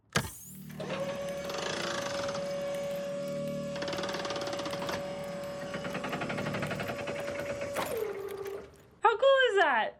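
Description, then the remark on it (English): A motorized double-bed platform on electric garage door reels lowers with a steady electric whir and a constant humming tone for about seven seconds, then stops with a shift in pitch, followed by a brief burst of a voice. “It's a platform on electric garage door reels.”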